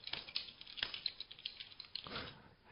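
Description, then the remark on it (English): Quiet, irregular clicking of a man typing on a computer keyboard, a steady patter of light taps with small bursts, faint, with no voices. “He's there. I can hear him typing.”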